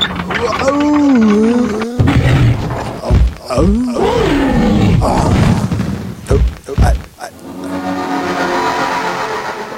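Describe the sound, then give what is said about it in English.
Loud wolves snarling and growling in rough, swooping bursts over several seconds, then a steady droning rumble like a running engine takes over near the end. “And the wolves.”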